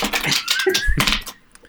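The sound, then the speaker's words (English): A crisp riffle of a deck of playing cards being shuffled, a dense burst of rapid flapping clicks lasting just over a second before trailing off into quiet. “Just card shuffling.”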